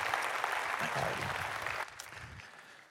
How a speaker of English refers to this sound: So let's give Dr. Hunt a round of applause.